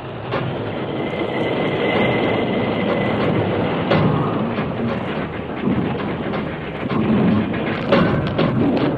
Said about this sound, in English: The masked man and his Indian companion had seen the runaway train from a distant hill and had ridden to the scene of the wreck at top speed.